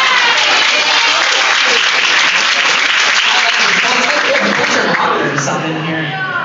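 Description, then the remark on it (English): A crowd breaks into sustained, loud applause for a woman, a dense wash of many hands clapping that holds steady for several seconds before thinning slightly at the end, with faint voices mixed in. “Just clap for her right now on that.”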